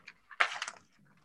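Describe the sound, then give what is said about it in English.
A piece of paper being scrunched up into a ball to throw around: a few soft crinkles, then a louder burst of crackling rustle lasting under half a second before fading to quiet. “I've just scrunched up a piece of paper and I'm now throwing it around like a fun little cat.”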